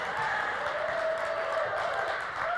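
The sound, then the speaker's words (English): A crowd claps for a speaker who has just introduced himself, with a dense, continuous patter of many hands that holds at an even level for the whole stretch, with no speech over it. “And you can clap. It's all right.”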